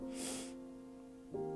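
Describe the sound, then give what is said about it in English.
One short, sharp sniff through the nose, followed by a quiet stretch with a low steady hum in the background. “Y'all forgive me if I sniff and I'm sipping a little tea.”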